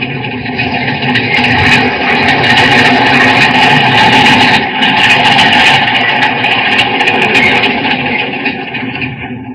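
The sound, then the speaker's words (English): A metropolitan underground train rumbles steadily through a tunnel while rounding a curve, a loud, dense roar with droning engine tones and rattling, screeching metallic clatter above, no voices. “There's one of our metropolitan trains coming into this tunnel.”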